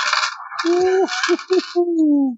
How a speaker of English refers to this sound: Dude, I had 5 sixes on that roll.